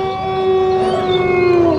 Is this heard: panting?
no